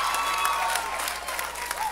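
A crowd applauds steadily for the people that left their lives in 2017, many hands clapping in a dense, continuous patter with a few louder claps poking through, plus faint whoops or voices mixed in.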